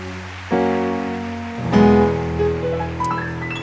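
A steady wash of audience applause, many hands clapping together, with a sustained tonal sound or music running underneath it for a few seconds.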